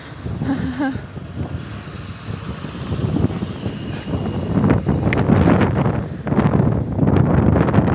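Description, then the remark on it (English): A big car rumbles past outdoors on a windy day, its broad engine and road noise swelling louder through the second half, mixed with gusty wind buffeting the microphone; a brief voice is heard near the start. “That was a big old car.”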